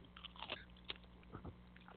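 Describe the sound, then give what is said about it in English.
Crunchy biting into a pickle right into the microphone, several sharp wet crunches followed by softer chewing, loud, with no talking. “Something I always wanted to do right into the microphone, and I had to take a bite out of a pickle. So here it goes.”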